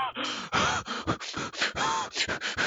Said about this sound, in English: But I just didn't want, like, just giant, like, wet breathing sound.